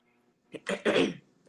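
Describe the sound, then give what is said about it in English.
Someone clears their throat: a couple of short rough bursts building into a louder, harsh rasp that lasts about half a second, with no talking. “Not clear your throat, please.”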